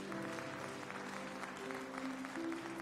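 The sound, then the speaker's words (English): An audience breaks into sustained, dense applause as a hand clap of praise for Jesus, many hands clapping steadily for the full stretch, with a soft undertone of organ or keyboard chords holding beneath the clapping. “Come on and give Jesus, the head of the church, a hand clap of praise.”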